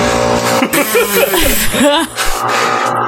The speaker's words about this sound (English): Also, oh my god, can cars please stop going past? Oh my god. The loudest cars in the world.